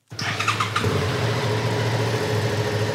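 A motorcycle engine cranks and catches, then settles into a steady idle with a low, continuous hum as a newly licensed rider sets off at a motorcycle riding course, with no talking.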